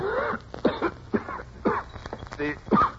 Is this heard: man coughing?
yes